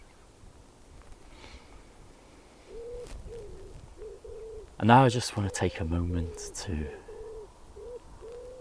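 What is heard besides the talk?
birds singing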